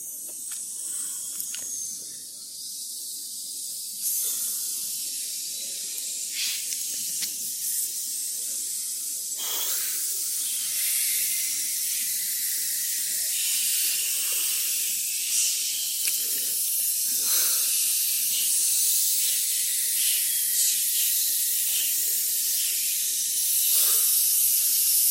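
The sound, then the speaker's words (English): Continuous, airy hissing from several people, a bright breathy rush that holds steady for the whole stretch with slight swells and brief dips, no talking. “Okay, last few seconds of hissing.”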